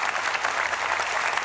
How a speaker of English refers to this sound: Hey, can we clap for Jesus? He's the one that makes us perseverant.